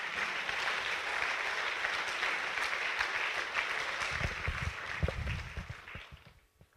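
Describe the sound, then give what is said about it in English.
A crowd gives a round of applause to Jesus, clapping steadily in a dense, continuous wash with some louder low thumps near the end, before the clapping tapers off and fades out. “Give a big round of applause to Jesus.”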